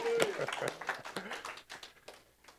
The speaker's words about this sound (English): Your sins are forgiven, and the kingdom of heaven is here now. We can clap for that. That's good news.